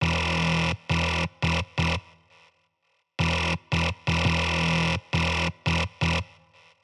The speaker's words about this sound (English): The sine wave gradually morphs into, well, this abrasive sounding patch which you hear at the end of the track. Just a little warning, this is a very horrible sound on its own. Give it a listen.